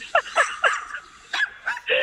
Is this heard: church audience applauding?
no